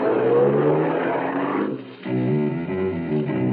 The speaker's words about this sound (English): I found a small, inconspicuous sedan with its keys tucked in the sun visor above the wheel. I got in and drove off.